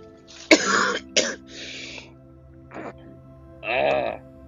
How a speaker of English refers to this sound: Still got the cough. Maybe I'm not feeling at 100% yet.